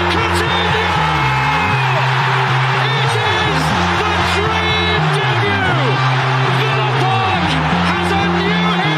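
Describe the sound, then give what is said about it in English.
A huge football stadium crowd roars and cheers continuously at full volume after a goal by Ramsey, a dense wall of voices with whoops rising through it and a low, droning chant shifting pitch underneath. “That's a big clap, mate.”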